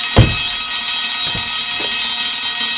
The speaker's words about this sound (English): Easy, the fire alarm. What's going on?